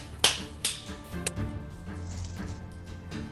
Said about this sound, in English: It's a bunch of metal slapping together